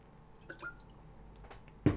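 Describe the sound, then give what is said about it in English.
Someone drinks water: a few soft, wet gulping and swallowing sounds, ending in a sudden louder splash-like burst, with no talking. “Drinking away. It's water, guys, don't worry.”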